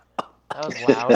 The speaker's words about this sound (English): That was loud. That was why am I coughing? Why am I coughing?